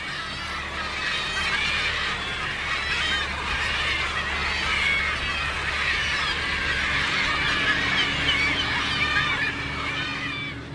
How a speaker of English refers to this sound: Any leftovers go back to the sea where there's about 500 hungry mouths in the form of gulls and gannets waiting to be fed.